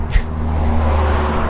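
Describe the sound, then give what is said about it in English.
Steady road traffic rumble with a low engine drone, as a car passes outdoors; a constant, fairly loud wash of vehicle noise with no speech. “keep waiting for these cars to pass.”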